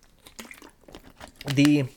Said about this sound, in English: Sorry, I'm gonna take a sip of water.